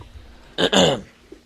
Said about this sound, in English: And, oh my gosh, I have a burp that is like stuck in my chest. It's terrible. I can't burp into the microphone.